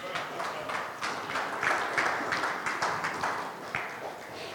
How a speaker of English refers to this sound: That's awesome. Why don't we just clap? Because that's fun.